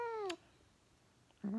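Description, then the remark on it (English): A cat meows twice from inside a kitty garoo, a pouch sweatshirt worn by a person: a falling, drawn-out mew at the start, a pause of near silence, then a second rising meow at the end. No talking. “See, it's the best little meow.”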